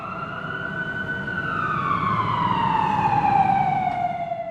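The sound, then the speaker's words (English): Fire truck sirens wail steadily as the trucks arrive to fight a blaze at a burning building, the Yakuza headquarters. The tone slides slowly downward as a vehicle passes, with a low engine rumble underneath and no voices. “Flames are coming from the building following his and Shadow's attack earlier, and fire trucks are just arriving to battle the blaze.”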